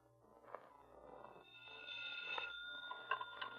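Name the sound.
telephone bell ringing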